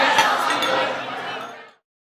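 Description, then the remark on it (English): Beer glasses clink together in a toast, a bright knock with a shimmering ring that fades over about a second and a half, amid murmuring voices. “All right, let's give it a try. Salud. All right, cheers.”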